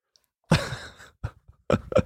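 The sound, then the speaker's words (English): A single drawn-out, voiced yawn rises up loud, followed by a few short breathy exhalations trailing off at the end. No talking. “I'm already getting the yawns.”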